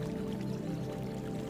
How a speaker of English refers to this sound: You can see a small stream that winds its way through the garden. Its gentle bubbling adding to the peaceful atmosphere.